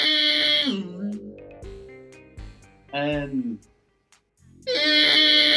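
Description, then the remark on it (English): A person's voice imitates Godzilla's roar in loud, screechy, wailing bursts, three of them, the first and last long and shrill, with brief quieter gaps between. “I've learned how to perfectly roar like Godzilla.”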